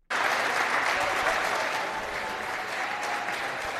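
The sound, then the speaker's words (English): A crowd breaks into sustained applause for an 80-year-old woman. The dense wash of many hands clapping starts abruptly and holds steady and loud throughout, with no voices standing out. “They're clapping her.”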